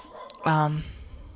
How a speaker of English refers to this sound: If you hear my dog, I apologize.